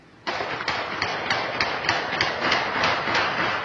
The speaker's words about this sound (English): Yes, those were the actual shots.